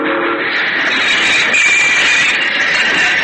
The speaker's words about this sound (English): Oh, I'd won this time. I'd stopped the train.